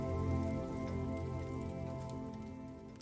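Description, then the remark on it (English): A fireplace fire crackles steadily, with small sharp pops scattered through a continuous soft hiss over a low, even hum. No one speaks. “You're listening to Relax by the Fireplace.”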